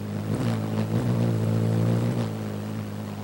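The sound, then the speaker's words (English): A hummingbird's wings, flapping 40 times a second, hum in flight, a steady, low buzzing drone with layered harmonic overtones that wavers slightly in pitch and swells briefly, continuing for about three seconds with no voices. “The rapidly shifting air pressure produces a harmonic set of sounds from low to high, creating that iconic musical hum.”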